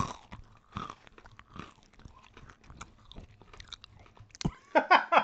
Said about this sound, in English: We can hear you chewing. They're fucking spicy.